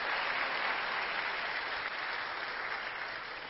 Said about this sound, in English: And you know she should, because today is her 16th birthday. I think she deserves a little round of applause for that.